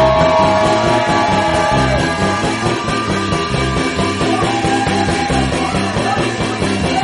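A church audience screams and shouts loudly and continuously when called to scream during a song about joy in the Holy Ghost, their voices blending over a driving, rhythmic musical beat that pulses steadily throughout.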